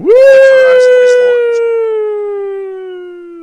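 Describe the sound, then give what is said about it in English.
A person lets out one long, loud excited "woooo" in reaction to Parkersburg, West Virginia being announced as the 500th 4G LTE network; it swoops up quickly and then slowly slides down in pitch over a few seconds, sounding much like a wailing siren. “Why did your woo sound more like a siren than a woo?”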